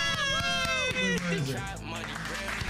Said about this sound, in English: The performance ends and the crowd erupts in applause.